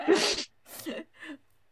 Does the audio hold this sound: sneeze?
yes